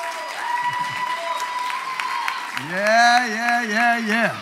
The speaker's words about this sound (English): He worked hard, studied hard, and we're proud of him. Now, make him feel good one more time. I've got a hand clap.